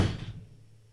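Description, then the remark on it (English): A single solid thud of a door shutting, a low, heavy knock that quickly fades into a faint hum, with no voices. “Door, is it closed?”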